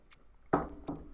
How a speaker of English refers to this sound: So now that that's all completely out of the way, I'm going to take a sip of my apple juice.